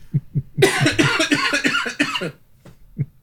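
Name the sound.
coughing fit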